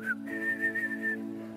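A person whistles a short, steady melodic phrase with a slight waver in pitch, clear, over a low sustained background hum, with no talking.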